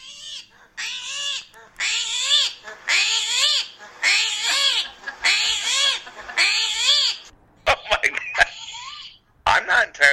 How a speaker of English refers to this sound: Did you know that the screaming hairy armadillo screams when it gets scared? I absolutely love the animal pick of the week, which is fantastic. This is the screaming hairy armadillo. Do you want to hear it?